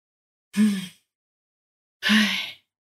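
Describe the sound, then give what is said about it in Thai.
Two short, breathy exhalations demonstrating faint, shallow breathing with very little breath, a second or so apart, each with a soft voiced edge like a faint sigh, with silence around them and no talking. “ในทางตรงข้ามค่ะของอีกฝากหนึ่งเลยก็อาจจะเป็นการหายใจที่เขาเรียกว่ารวยรินก็คือหายใจน้อยมากหรือแค่แบบ”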